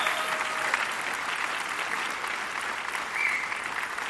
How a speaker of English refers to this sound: So will you just give them a round of applause for us, please, and thank them.